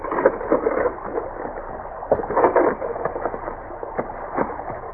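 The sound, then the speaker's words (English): Boats being run up onto the shore, with rough scraping and grinding bursts against gravel and water, rumbling unevenly at moderate loudness with no voices. “They beached the boats and got out to face a grinning Pryor in his detail.”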